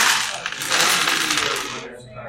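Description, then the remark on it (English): An hourglass sound effect: a steady, bright granular hiss like trickling sand that runs for about two seconds, then thins out and fades at the end. No one speaks over it. “Sorry, that was the sound as the, of the hourglass as we got onto the boat and went to Beaver Island.”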